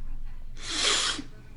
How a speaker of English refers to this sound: Can you confirm for us now that the big guy is indeed your father, Joe Biden? Sniff for yes. Man, this family loves sniffing.